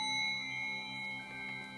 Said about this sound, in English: And every time I move to the next chakra, you'll hear a ding, so you'll, you should hear a total of 7 bells.